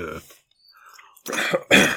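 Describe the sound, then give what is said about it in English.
Someone coughs twice in quick succession, harsh, after a brief voiced sound and a short quiet pause, as a bite of spicy food went down the wrong way. “I mentioned sexy, you start coughing.”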